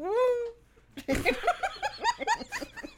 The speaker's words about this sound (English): What was that noise? Sounded like a distressed cat.